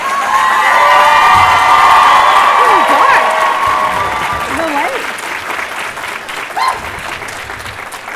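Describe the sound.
A crowd applauds and cheers loudly, with steady clapping and high shouts and whoops rising over it, then the noise gradually tapers off while a few voices call out.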